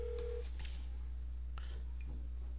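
A brief steady phone tone gives way to a few short clicks and beeps of a number being dialed, all over a constant low electrical hum, with no one speaking.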